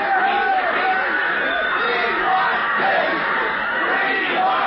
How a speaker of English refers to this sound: Then from that gladdened multitude went up a joyous yell. It rumbled on the mountaintops, it rattled on the dell. It struck upon the hillside and rebounded on the flats.